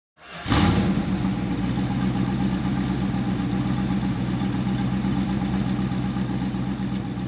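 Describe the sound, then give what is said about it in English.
A 1969 Dodge Charger Daytona muscle car with a Hemi engine fires up with a sharp burst, then settles into a loud, deep, steady idle, rumbling for several seconds with no voices. “In 1969, Dodge put out an extreme version of its Charger muscle car.”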